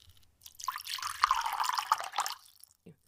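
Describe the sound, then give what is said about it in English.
A thin stream of precious perfume pours from a broken clay jar onto a man's feet, splashing for about two seconds with soft dripping sounds, then trails off into a last small drip. Quiet, with no voices. “Then she poured the precious perfume on his feet.”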